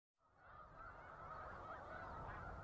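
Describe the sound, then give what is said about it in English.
A dense chorus of migrating snow geese honking near Savannah, New York, in the Finger Lakes, a continuous overlapping clamor of many birds that swells in quickly and stays loud and steady throughout, with no talking. “We leave you this morning near Savannah, New York, in the Finger Lakes, a favorite spot for migrating snow geese.”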